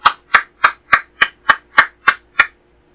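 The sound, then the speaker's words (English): A steady run of about nine sharp hand claps, evenly spaced roughly a third of a second apart, crisp and fairly loud with no talking. “No, that was a real clap.”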